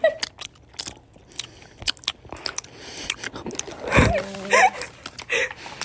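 Close-up chewing with crisp, crunchy bites and wet mouth clicks repeating irregularly, loud and near the microphone, with a brief voiced sound partway through.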